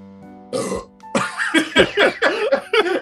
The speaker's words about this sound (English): And cranberry goes right to my burps.